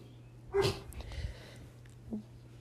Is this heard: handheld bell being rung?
no